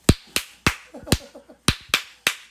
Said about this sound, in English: Let's do a clap off. Let's have a quick clap off. You go first. What's your churchiest clap?